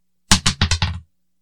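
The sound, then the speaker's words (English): A die, rolled during a board game to meet or beat a 4, clatters across a hard surface in a quick run of about five bright, rattling knocks that tumble, lose energy, and settle within under a second. “So that's just rolling a dice.”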